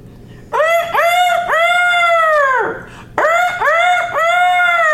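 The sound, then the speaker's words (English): A voice imitates a rooster crowing twice: loud, drawn-out cock-a-doodle-doo calls with rising and falling pitch, separated by a short pause. “I've been looking all over for someone to teach me to crow like a rooster.”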